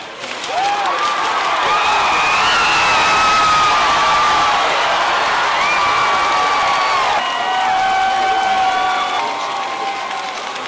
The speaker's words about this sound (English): And that's the cheer going up. As Ohio is projected to go to Obama at 9:20, it's 9:20 p.m. on the night in the Mayflower Hotel at the Democratic National Party, election night party. And as you can hear, they're pretty excited here.